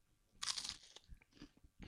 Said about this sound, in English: Oh, he's chewing it. Yeah. Oh, he's got a bit of a. He looks happy.